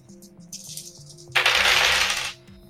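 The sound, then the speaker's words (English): A few light clicks and clacks, then about a second of dense, bright rattling, like dice tumbling across a hard table, with soft music underneath. “But the dice aren't hot?”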